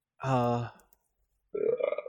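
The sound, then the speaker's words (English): A loud, deep, rumbling burp lasting about half a second, then a brief silence before someone starts talking. “I guess what have y'all been doing recently besides burping?”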